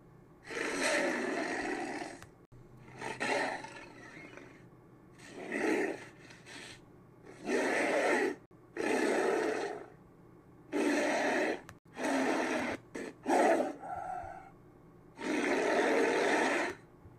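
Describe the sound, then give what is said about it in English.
A giant ape's monstrous roar, built from layered lion, tiger, leopard, horse, walrus and gorilla sounds, erupts in about eight loud bursts of growling and snorting, each separated by brief pauses, with no talking. “This version of King Kong was voiced by a mixture of many different animals, such as lion, tiger, leopard, horse, walrus, and gorilla sounds”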